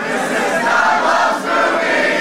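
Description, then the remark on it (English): A large live audience at the Firebird in St. Louis, Missouri, in 2015 roars together, a loud, continuous wall of massed voices cheering and singing at full volume with a brief dip near the end, no single voice standing out. “That was much better than the clapping. The clapping needs some work, but you guys, you got pipes. You can totally sing.”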